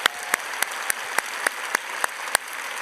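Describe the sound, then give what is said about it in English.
A church audience applauds steadily to give the military a big hand, a dense wash of clapping hands with a few sharper, louder claps popping out at fairly regular intervals throughout. “Let's give all the military a big hand.”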